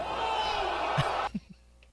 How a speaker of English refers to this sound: Here is the first one that I found. And they just take turns slapping each other.